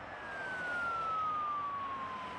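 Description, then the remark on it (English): An emergency vehicle siren in the Bronx, New York City, wails, its tone sliding slowly downward in one long steady sweep over a broad hum of city traffic; no one speaks. “So literally constantly sirens going.”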